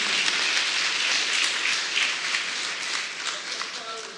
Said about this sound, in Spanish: Si usted lo cree, dale un aplauso fuerte al Señor. Amén.